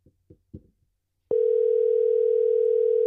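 A few soft clicks, then a steady electronic ringing tone from an outgoing phone call starts and holds unbroken, clear and fairly loud, through the end. No one speaks.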